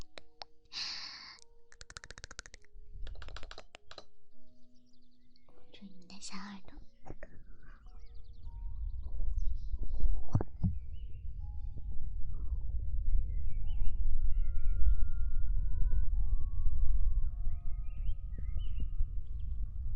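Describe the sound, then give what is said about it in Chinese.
ASMR ear-eating mouth sounds: a few quick bursts of wet, crackling smacks early on, then softer breathy mouth noises over a steady low rumble with faint high tones. “ASMR Ear Eating Instant Tingles”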